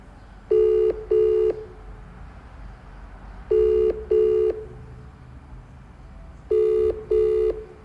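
A phone ringback tone on a call placed by the Ratchet Radio TV show purrs in three double bursts, each pair of short buzzy tones repeating about every three seconds over a faint background hiss. Nobody speaks.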